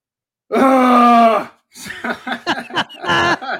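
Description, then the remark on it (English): A half-hearted attempted scream, made to charge a noise-powered device whose graph rises with the sound while searching for a geocache: one sustained, steady-pitched vocal cry lasting about a second, sliding slightly downward, followed by choppy bursts of laughter. “I'm like, it's just a scream. Okay, ready?”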